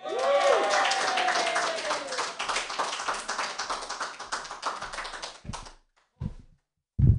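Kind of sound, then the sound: crowd, audience applause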